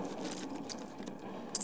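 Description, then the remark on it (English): Gold coins, about 200 in gold, clink as they are handed over: a few bright, sharp metallic taps, spaced irregularly with a quick double clink at the end, fairly quiet over a low hum. “Here, maybe 200 in gold. There's another 50 in paper. I got about the same. Hand it over.”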